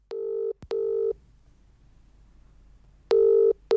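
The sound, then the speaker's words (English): A phone ringback tone, the double-pulse ring heard while an outgoing call to a mother connects: two short, steady buzzing tones, a two-second pause, then the pair starting again. Clear and fairly loud, no voices. “So let's have a listen to that phone call now.”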